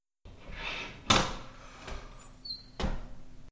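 The wooden door of an inn creaks open early in the morning: a sharp latch clack, a thin squeak of hinges, then a second solid knock as it swings and settles. No voices.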